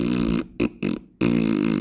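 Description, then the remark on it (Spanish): A loud, buzzy fart noise made with the mouth: a long blast, two short sputtering bursts, then another sustained blast, with no talking. “El gato se echa pedos.”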